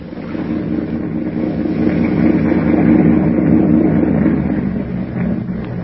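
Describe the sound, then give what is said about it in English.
A low, steady engine hum rumbles continuously, a motorboat idling or cruising on New York's East River toward a dock, its deep purr swelling slightly in the middle before easing off. “Suddenly, the thick silence is broken by the low purr of a motorboat engine.”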